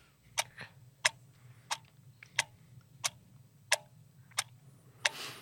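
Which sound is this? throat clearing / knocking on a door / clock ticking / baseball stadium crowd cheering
clock ticking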